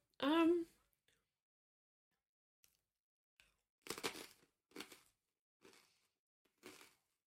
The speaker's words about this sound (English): Is that really loud? To me, it's soothing. Okay. Watching you eat chips is like, it's kind of like hot for me.